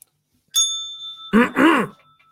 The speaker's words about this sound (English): Where is that positivity bell? Because I'm really needing it right now.